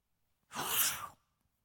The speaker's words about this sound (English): Excuse me. I've got this kind of run of sneezing while I'm preaching these days, and good thing you're not here.